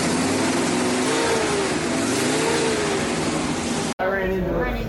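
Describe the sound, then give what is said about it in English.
Video-game car engines rev in a dense, continuous roar during a tournament round, their pitch rising and falling as the cars race, some circling the outside while others drive into the center, before the sound cuts abruptly near the end into a thinner engine drone. “We see already some of the strategy going on with three of our drivers seem to be circling on the outside with the rest of them racing into the center and one going into a wall because they failed driver's ed”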